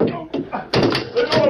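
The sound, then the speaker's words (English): A heavy cell door slams shut with a single loud bang partway through, its clang ringing briefly while someone talks before and after. “I'll get this door open in a jiffy.”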